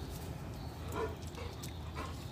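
A dog lets out a couple of short, whiny barks and whimpers about a second apart, fairly faint against a steady low background hum, with no one speaking.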